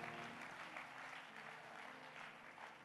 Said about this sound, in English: Are you clapping hands for the Lord? Yes.